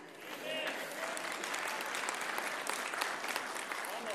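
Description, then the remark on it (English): A crowd claps during a morning talk about political polarization, in a dense, sustained burst of applause lasting several seconds, with faint voices murmuring underneath. “Yeah, don't be clapping, people.”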